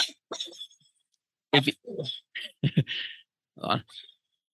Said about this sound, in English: We're going to finish it out with a lively puppy now.